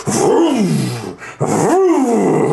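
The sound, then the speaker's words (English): A voice imitates the roaring engine of a war machine full of screams, with flame gouting out the back: two loud growling bursts that swoop up and down in pitch, separated by a brief pause. “Puts it into a little slot, slides it down, and you hear this... the screams of the damned just kind of roar up, flame gouts out the back of the war machine.”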